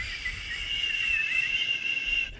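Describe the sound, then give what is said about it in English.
A thin, airy whistle forced through a gap of missing teeth with the mouth open holds one high, slightly wavering pitch for a couple of seconds. It's fairly soft, with no voices. “What you can do is if you open your mouth while you're skating around, you can whistle.”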